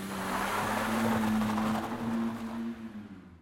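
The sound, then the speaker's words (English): A van engine hums steadily with a low drone and road noise, holding loud for a few seconds before fading away as it drives off into town. “got back in his van, and drove into town.”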